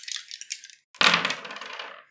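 Dice rattle briefly with light, quick clicks, then clatter loudly onto a hard table and skitter to a stop over about a second, rolled in a tabletop game needing a two. Clear, with no talking.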